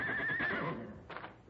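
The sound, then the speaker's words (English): A horse, Black Thunder, neighs far off: one faint, quavering whinny that wavers on a high pitch, then drops and fades, with a short breathy snort near the end. No voices. “That must be Black Thunder way off there. He's a mean one, all right.”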